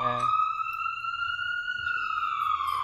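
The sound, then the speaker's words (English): A police car siren wails outside in one long, slow rise and fall, steady and fairly clear, with a low rumble underneath. “That's a fake siren. I can tell nothing's happening.”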